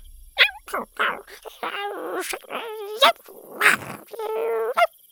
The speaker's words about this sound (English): The three adorable horned heads bonked into each other and chirped like little puppies.